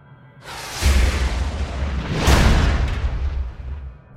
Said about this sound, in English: And then you hear a blast.